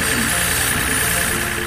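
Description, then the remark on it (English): A rocket ship engine roars loudly and steadily, a dense, continuous rumble with a hissing edge that fills the whole short stretch without letting up. “But the rocket ship house was getting awfully loud.”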